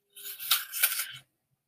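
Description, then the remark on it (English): A crisp, wet crunch of someone biting and chewing an apple, a bright rasping burst about a second long with two sharper snaps in the middle, then silence. No one speaks. “And I'm currently crunching on an apple, so if I pause, I'm crunching on this apple.”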